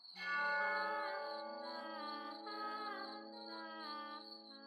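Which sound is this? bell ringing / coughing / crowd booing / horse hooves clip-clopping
bell ringing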